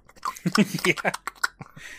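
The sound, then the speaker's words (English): A voice imitates a slurping sound, a run of wet, sucking mouth noises with short smacking bursts lasting about two seconds. “Tells him he can't explain it, but then explains that it's kind of like a slurping sound.”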